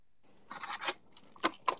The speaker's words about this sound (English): That's someone else coming off mute and using their mic to chew with.